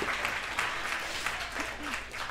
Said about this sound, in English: Yes. Yeah. Give it up for him. So see, we're going to clap. Do it to him.